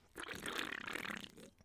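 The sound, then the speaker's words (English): A sloppy, wet sip of beer: a single slurping gulp lasting about a second, gurgly and bubbling, fairly loud with no talking over it. “That sounded like a sloppy sip.”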